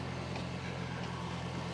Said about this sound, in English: So we're firing up the truck. Yes. Yes.